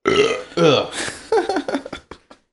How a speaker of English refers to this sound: Dude, I had a fucking salsa water earlier and I can't like shake the burps from it.